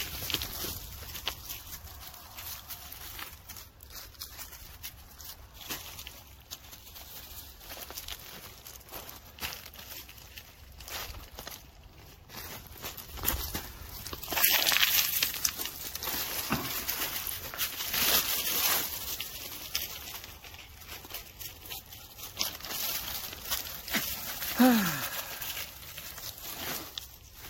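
Footsteps trudging through a swamp in sunshine while getting ready to go off grid, a steady run of soft, irregular crunching and rustling steps over a constant hiss, with a louder stretch midway and no talking.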